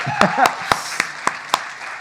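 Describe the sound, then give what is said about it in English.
Clapping from a church audience celebrating people who accepted Christ: six sharp, evenly spaced claps in a steady rhythm, with faint voices murmuring underneath at the start. “Who are these weirdos clapping around me?”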